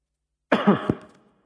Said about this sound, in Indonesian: Repotnya kalau mic ini begini, mau batuk gak bisa dijauhin. Jadi, dan zaman sekarang kalau batuk harus hati-hati.